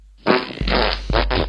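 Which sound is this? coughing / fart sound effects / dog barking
fart sound effects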